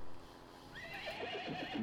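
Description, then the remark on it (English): An armored knight's horse whinnies with a shrill, wavering neigh that rises and falls, while hooves clip-clop steadily underneath. It's fairly loud, with no one talking. “His armor can turn bullets, but the weight of his truck will crush both him and his horse.”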